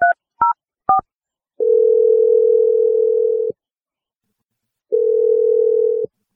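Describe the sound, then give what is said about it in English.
Three quick dual-pitched keypad beeps as a phone number is dialed for a call on a morning radio show, followed by two long, steady ringback tones separated by a pause of silence. No one speaks. “I'm gonna dial his number”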